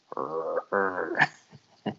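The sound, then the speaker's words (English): A voice imitates the character Lobo growling through gritted teeth: two strained, guttural bursts, fairly loud, followed by a sharp hiss and a few short grunting fragments. “And Lobo is just gritting his teeth and growling.”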